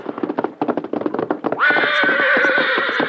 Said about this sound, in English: Meantime, having returned to camp, the Lone Ranger and Tonto were preparing supper when Dan's horse, Victor, galloped in and stopped.